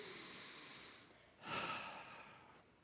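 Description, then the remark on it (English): A single long, deep breath drawn in, a soft airy rush that swells suddenly and then slowly fades over about a second, with no talking. “Now, everybody, I want you to take a nice, big old, deep breath right now.”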